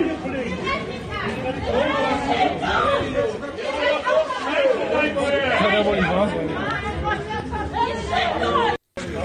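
crowd booing

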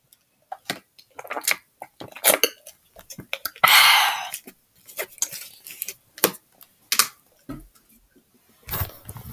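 person drinking water

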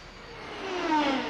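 fast aircraft flying overhead

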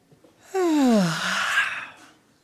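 a person yawning

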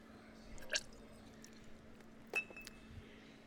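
sipping cognac

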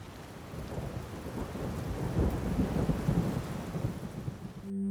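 thunderstorm with rain

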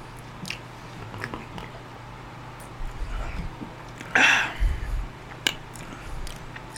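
sipping beer

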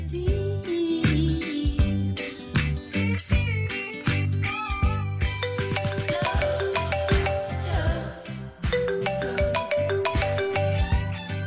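telephone ringing

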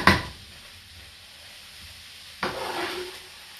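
onions sizzling

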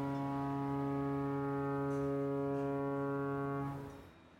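foghorn blowing

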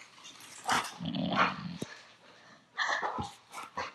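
loud snoring

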